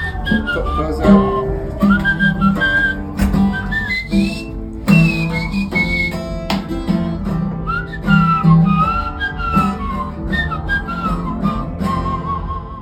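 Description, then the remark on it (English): A man whistles through his teeth, a shrill, agile whistle tracing a soaring guitar-solo melody, bending and sliding between notes over a full band backing, loud throughout. “And then he did this teeth whistle, which is the guitar solo that … plays on ….”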